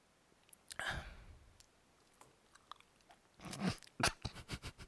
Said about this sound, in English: A lot of slurping on the microphone there. This fucking dry mouth.